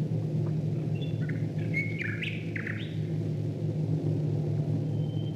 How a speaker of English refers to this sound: But in this recording, you can hear the sound of Royal Air Force bombers flying above the birds.